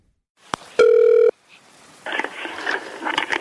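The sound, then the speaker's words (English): A phone call connecting: a sharp click, then a single loud buzzing ring tone lasting about half a second, followed by a burst of noisy, crackling line sound as the call goes through. “We spoke by phone.”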